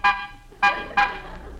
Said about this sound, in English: Pull up, Rochester. We'll stop here. Honk the horn. Maybe somebody will come out.